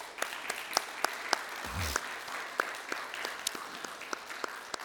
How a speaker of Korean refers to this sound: 여러분, 이미 돌아가셨고 또 너무 오래전 일이긴 하지만 우리 한국의 전쟁 고아들을 1,000명이나 넘게 살려낸 한국판 쉰들러 리스트 영웅이라고 할 수 있는 우리 이분께, 또 고마운 우리 또한 이 당시의 미국의 병사들께 우리 한번 박수를 드리는 것이 어떨까요?